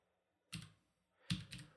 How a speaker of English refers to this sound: I'm in the dark. I can't really see my keyboard. I don't type that slow, for real.